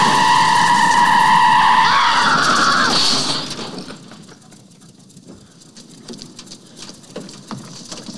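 A car in traffic skids with a loud, high tire screech for about three seconds as it nearly hits a boy, then quick settling and soft scattered street noise as the moment passes.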